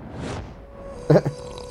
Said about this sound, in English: Oh, sorry. Sometimes it's just hard to notice how loud I may be while gulping down my tea.